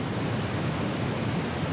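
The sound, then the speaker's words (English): A steady, deep rumbling hiss of red noise (also known as brown noise), darker and bassier than pink noise, continuous and even throughout with no speech, a bit like surf at a beach. “And red noise is an even deeper version.”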